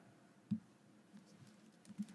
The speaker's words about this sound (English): So, if you excuse my clicking for 1 second, I don't know.